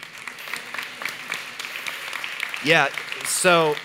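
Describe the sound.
A crowd applauds steadily, a dense patter of many hands at moderate volume, with a couple of loud voiced shouts or cheers rising above it near the end.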